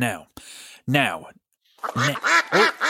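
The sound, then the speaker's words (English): A duck quacks repeatedly in loud, nasal bursts: a few spaced calls, a brief pause, then a quicker run of quacks. “Well, it's that sounds like the question duck, Matthew, which means it's time for us to let our listeners know”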